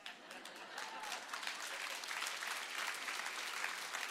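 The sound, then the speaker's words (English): A crowd applauds steadily for several seconds, dense continuous clapping with faint cheering mixed in, cheering on a father-and-daughter team who have just won a championship. No clear speech. “Thank you for cheering us on.”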